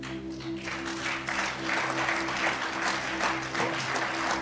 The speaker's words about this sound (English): See, I see you are clapping.